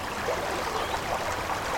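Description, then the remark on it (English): The old brook of Cromford, a small village in the Derbyshire Dales, England, babbles and gurgles steadily, a continuous bubbling wash of flowing water with no voices and no pauses over the short stretch. “A group have gathered at the bank of the village's old brook.”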